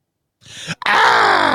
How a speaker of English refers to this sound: Do you have the scream? Hold on. Little on-air production meeting here. Let's see. You'll see why I need it. I can always add it afterwards. Meanie scream.